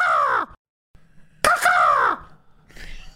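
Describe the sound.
A voice imitates an eagle's cry with two loud, harsh, downward-sliding screeches separated by a brief pause, followed by a fainter, rougher trailing call.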